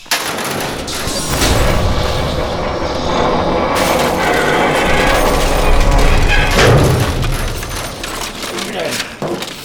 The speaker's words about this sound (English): Did you just tear open those steel doors with your bare hands?